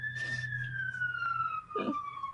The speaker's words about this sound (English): Wait for the police car. They're coming for you.